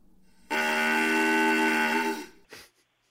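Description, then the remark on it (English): A cow-bawl call, a brass instrument with a clarinet-like reed and a long tube, blown to imitate a cow's moo: one loud, sustained, reedy, brassy bawl lasting about two seconds, followed by a brief breathy puff. No one speaks. “This was supposed to be a cowbell, B-A-W-L.”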